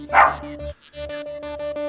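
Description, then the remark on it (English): A single sharp, loud dog bark sounds at the very start over steady background music that continues after it with a brief pause. “I like the bark in the background.”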